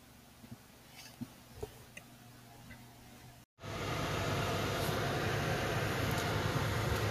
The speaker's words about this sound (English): Yes, I record stuff in the car because I'm actually by myself majority of the time. I keep the fan running so you don't hear too much music going on in the background. That's what that is for the background. It's my air conditioning for my car.